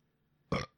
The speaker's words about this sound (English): God damn, I'm sorry for the fucking burp.